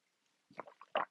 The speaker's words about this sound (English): And hold up a sec, let me get a sip of ginger and green tea here.